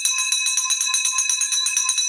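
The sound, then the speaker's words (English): A bright victory bell, rung to celebrate a closed deal, rings rapidly and continuously, its metallic strikes blurring into a loud, steady clatter for a couple of seconds, with no voices underneath. “There's the victory bell”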